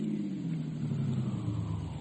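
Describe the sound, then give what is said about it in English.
A steady low rumble of a car engine while driving uptown, continuous, with a slight rise in pitch as it carries on for a couple of seconds, no voices. “I drove him uptown.”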